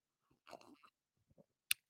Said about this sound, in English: I'll take a sip to that. Excuse me.